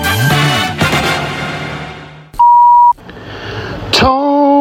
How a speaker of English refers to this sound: Welcome to Tony's Wishing Well Answering Machine. Please leave your message after the beep.